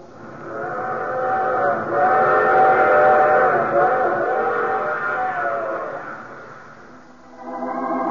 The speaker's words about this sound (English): I take this same train each week at this time.